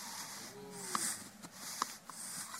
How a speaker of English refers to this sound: You'll never blow your nose the same again, I hope.